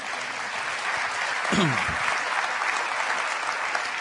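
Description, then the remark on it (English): An audience in church breaks into steady applause, a dense wash of many hands clapping at a fairly loud, even level for several seconds, with a brief low voice sounding partway through. “By the way, you're allowed to clap in church, and I think that was worthy of a clap.”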